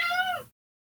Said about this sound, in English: I hear kitty, and it's not my kitty. My cat. I love your cat.